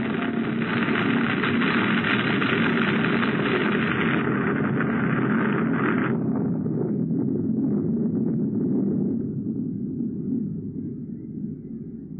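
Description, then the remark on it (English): An avalanche buries a car: a loud, steady roaring rush for about six seconds, then the hissing top drops away, leaving a deep rumble that gradually fades. “Get out of the car, quick! An avalanche!”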